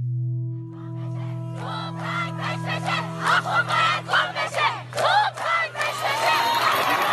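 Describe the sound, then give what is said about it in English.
A large protest crowd in Iran cheers a woman cutting her hair and chants "death to the dictator" in loud, rhythmic bursts, voices rising together over a low steady hum, building in intensity toward the end. “In scenes unprecedented in the Islamic Republic, a woman cuts her hair as the crowd cheers her on, chanting death to the dictator.”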